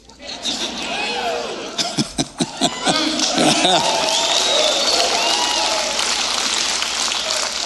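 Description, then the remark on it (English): An audience cheers and applauds loudly and continuously, with scattered sharp claps, rising whoops and shouts layered over a dense crowd roar that holds steady throughout. “Obviously, everybody's cheering here.”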